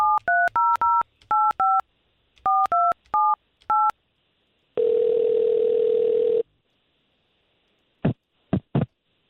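A quick run of touch-tone dialing beeps in short bursts as radio station hosts call a man's phone number, followed by a single steady ringing tone and then a few sharp clicks on the line; no one speaks.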